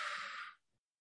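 A single long, breathy exhale from a person doing a deep breathing exercise, following a big inhale through the nose, rushes out for about half a second, then fades quickly into silence.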